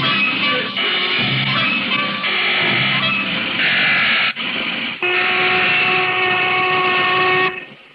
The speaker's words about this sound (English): That's the lunch whistle, Basco.